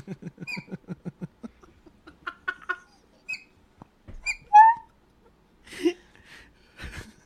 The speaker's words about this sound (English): That horn sounds like a baby bird. That's not okay.